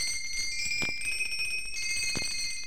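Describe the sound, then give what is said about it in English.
A doorbell rings at Sandy's workshop at the North Pole with bright, sustained chiming tones that shift pitch partway through, with two soft thumps, moderately loud, with no one speaking. “We walked over to Sandy's workshop. Rang the bell.”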